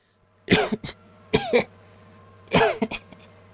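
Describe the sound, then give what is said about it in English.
A voice imitates a wounded, still-living harpy coughing: three rough, wet cough bursts, each followed by a smaller hack, spaced about a second apart, fairly loud over a faint steady hum. “All of you, as you're kind of like processing this and this almost impossible feeling event, you hear the still living harpy cough.”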